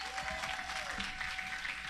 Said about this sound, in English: So Pastor Johnny's going to talk to you more about temptation. So go ahead, clap it up for Pastor Johnny. He's going to come right up here.